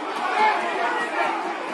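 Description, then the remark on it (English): A football crowd roars and jeers in a steady, dense wash of many voices, rising slightly midway and holding at a fairly loud level throughout, with no single voice standing out, as fans react to a push-and-shove between players while stewards hold them back. “Fans to our left doing their nut.”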